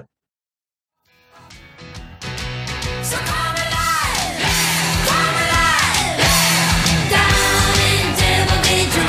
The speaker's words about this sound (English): Apparently, it's a good scream.